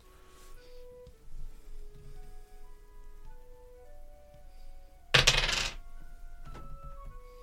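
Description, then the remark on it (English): Dice clatter on a hard table, rolled for a lore check: scattered small clicks and faint ringing taps, then one loud, brief rattling roll near the end that lands on 12. No voices. “It's 12 on the dice.”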